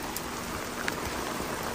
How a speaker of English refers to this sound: But the skies were ominous. And then, sure enough, it did start raining.